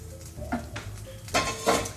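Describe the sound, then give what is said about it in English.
Drained pasta being tossed with a bacon sauce in a pan: soft clinks and scraping, then two louder wet, clattering bursts over a steady low hum. “So I'm now adding it to the sauce that has the bacon.”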